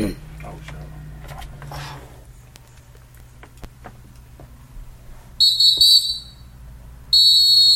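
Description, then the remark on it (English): Someone whistles a shrill, high note in two loud bursts: a short wavering one, then a steadier tone that runs to the end, over a low background rumble. “Look at that whistling.”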